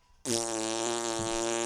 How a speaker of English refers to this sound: Yeah, I'm not the one farting on air.